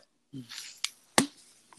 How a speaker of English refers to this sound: No, I'm pouring my cocktail.